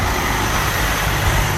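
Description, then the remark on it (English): A big bus engine rumbles next to people running alongside it on the road, steady and loud, with deep low-end drone and broad road noise filling the short stretch without pause; no one speaks. “So, if you're wondering why the sound quality is terrible, we are running right now next to a big bus.”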